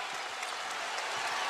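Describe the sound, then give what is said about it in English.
A large basketball arena crowd, on its feet, roars and cheers in a dense, steady wash of noise with clapping mixed in, loud and continuous without any break, as Yuri Collins brings the ball up the floor and the Billikens must score to win. “Collins, crowd on its feet.”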